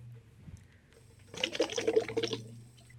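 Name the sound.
bubbling liquid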